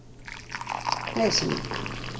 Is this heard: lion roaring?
no